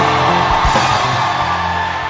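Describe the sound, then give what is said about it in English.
A large church audience shouts and whoops together for the Lord in a loud, sustained roar, with voices overlapping continuously for a couple of seconds and a few deeper yells cutting through near the start. “And you will not give the Lord a shout.”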